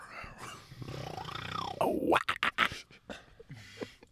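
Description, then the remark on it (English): A person imitates a cougar's call: a long, raspy, wavering screech that rises and falls, followed by a few short, harsh growling bursts. It is fairly loud, with no talking over it. “That's a cougar. She. That was it. That was a pretty good impression.”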